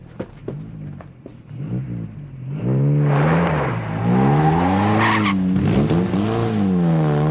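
A woman's car revs hard and speeds away, its tyres squealing loudly in long, wavering shrieks that rise and fall over the roaring engine, sustained.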